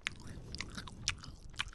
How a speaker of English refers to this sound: It's like a chewing ASMR video now.